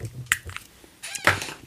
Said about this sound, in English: I just sprayed my mouth with Listerine. That's Listerine. I can't read the label because I don't have my glasses. That's Listerine pocket spray. Pocket pack.